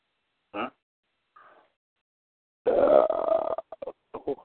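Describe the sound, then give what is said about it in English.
A loud, drawn-out belch rumbles for about a second. A short throaty burst and a faint murmur come before it, and a few brief choppy sounds follow. “Home of the Belch.”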